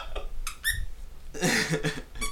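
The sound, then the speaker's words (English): A few short, high-pitched squeaks come in quick bursts, fairly loud, with a longer, noisier squeaky stretch in the middle and another chirp at the end. No one speaks. “How many squeaks would you give this beer?”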